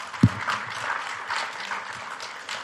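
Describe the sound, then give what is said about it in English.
An audience applauds Commissioner Kunish after a speech, steady clapping, a dense wash of many hands at moderate volume throughout, with a single low thump near the start and no voices heard. “Round of applause for Commissioner Kunish.”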